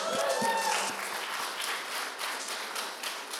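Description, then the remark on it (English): A church audience bursts into cheering and applause for almost 200 people baptized by the church, a steady wash of clapping with a few raised voices and whoops at the start, then dense, sustained clapping that carries on at an even level. “You could cheer for that.”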